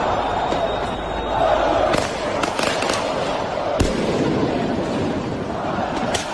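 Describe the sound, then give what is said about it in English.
A huge pro-Palestinian crowd of over a million people on the streets of Paris roars in a dense, continuous wall of voices, punctuated by several sharp, loud bangs like firecrackers scattered through it. “this is Paris, over a million people on the streets of Paris. And this is an audio, you can't see it, but you've probably seen this on the news.”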